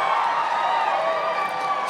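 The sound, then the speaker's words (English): A live audience at a Schmanners live show in Cincinnati cheers and applauds in a dense, steady wash of clapping and whoops, holding at a fairly loud, even level for about two seconds with no speech over it. “Pause for applause.”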